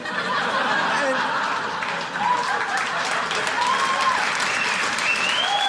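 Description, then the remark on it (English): A crowd applauds steadily for several seconds, a dense wash of clapping with a few scattered laughs and chuckles mixed in, holding a fairly even loudness throughout. “Don't clap for that.”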